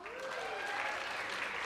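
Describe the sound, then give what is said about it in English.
An audience claps steadily in response to a bouquet of flowers, dense overlapping applause at moderate volume, sustained without a break from start to finish. “If you're sitting next to your wife or next to your girlfriend and they clapped really loud on that one, note to self.”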